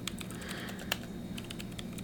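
Quick, light taps of someone typing a text message and adding a picture, clicking in an uneven but steady rhythm over a low background hum with no voices.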